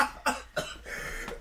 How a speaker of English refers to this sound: I'm sorry, I have a small cough today, and my voice is a little scratchy, so I apologize if that's annoying, but I don't know.